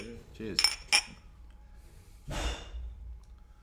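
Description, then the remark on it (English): Glasses of lager clink together in a toast, two quick bright chimes, followed by a soft exhaled breath or sigh. “You have to drink it together, man. Oh. Yeah, cheers.”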